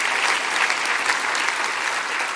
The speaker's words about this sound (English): And if you're a first-time guest, we welcome you. Come on, clap your hands for our first-time guest tonight.